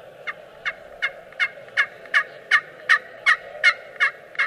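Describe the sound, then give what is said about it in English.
A hunter's turkey call imitating a turkey, played with barely any pressure and not at full volume: about a dozen sharp, bright yelps in a steady, evenly spaced rhythm, fairly loud and growing slightly stronger, over a low steady hum with no talking. “I like them when they get close, you start hitting that soft purr.”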